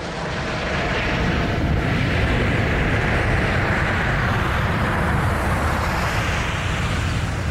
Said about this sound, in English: And just for comparison, I've got for you a recording of an airplane taking off. This is posted on YouTube by PDX Aviation. Because they are not dissimilar noises.